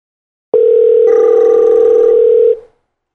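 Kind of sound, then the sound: signal or alarm, telephone ringing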